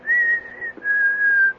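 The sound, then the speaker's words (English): A person whistles a short, wandering, self-made tune in two sustained phrases, the pure tone gliding gently up and down with a brief break between them. Clear, with no talking. “No, that's just what I whistle. You asked me what I was whistling.”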